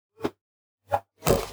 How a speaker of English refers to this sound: Pause for drinks.